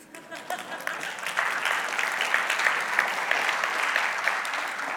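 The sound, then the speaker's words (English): A room full of people breaks into steady applause, many hands clapping at once in a dense, sustained wash that swells quickly and holds strong for several seconds. “That would have been a great time to clap.”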